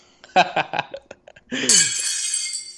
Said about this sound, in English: So that sounds like a plate breaking. Yeah. And like, not like glass. It sounds like pottery plate. I'm going Okay, well, specific. this isn't specific. It just says a plate smashing.